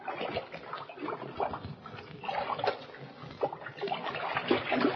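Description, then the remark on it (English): Cold water splashes and sloshes continuously in irregular bursts as Hopalong and California thrash about at the bottom of a deep, old abandoned well, a good 40 feet down; moderately loud, with no voices. “The cold water at the bottom of the deep well has revived them.”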